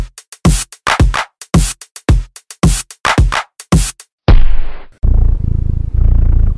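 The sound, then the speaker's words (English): A cat purrs in a steady, low rumble near the end, after a run of sharp rhythmic bursts and a brief hiss. No one speaks. “I don't know about you, but I find nothing more relaxing than sitting by the fire on a cold winter's night with a cat sitting on my knee purring, and possibly having a glass of brandy in my hand.”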